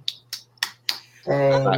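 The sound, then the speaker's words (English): Four sharp, crisp hand claps at an even, moderate pace, followed right away by a person beginning to speak. “Clap.”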